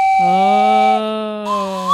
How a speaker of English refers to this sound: I just woke up from a trance. Was somebody playing a slide whistle in here?